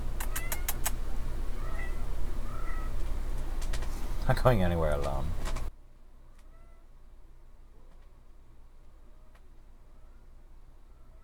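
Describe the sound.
A single drawn-out cat meow rises near the middle, clear, over a busy outdoor background with someone speaking briefly; afterward the scene drops to a quiet hush.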